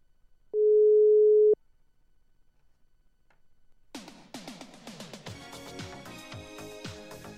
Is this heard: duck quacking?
no